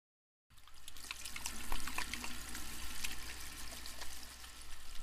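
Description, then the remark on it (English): A hot water tap runs steadily after a brief silence, water splashing continuously into a sink with a broad, hissing rush and small splatters, fairly loud throughout. “Hot water. It's critical we keep our hands clean during COVID-19.”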